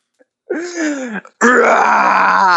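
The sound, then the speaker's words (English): A person imitates a tiger roar with their voice: a low, rasping growl that swells, breaks off briefly, then returns as a louder, sustained gravelly roar. No other speech. “All right, so let's hear the tiger noise.”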